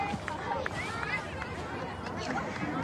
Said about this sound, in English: Final 2 minutes. Quite the cheering section.